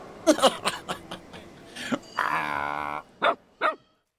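A dog barks in short sharp bursts, breaking into a longer drawn-out howling whine midway, then two more loud barks at the end.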